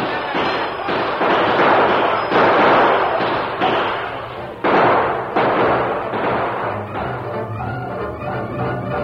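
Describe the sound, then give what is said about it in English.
Battle gunfire as defenders open fire on charging Native American raiders: a dense, loud barrage of overlapping shots and booming bursts that crack and rumble continuously, with sharp new volleys breaking in every second or so. “We gotta fight. Here come the redskins. They're charging. Open fire!”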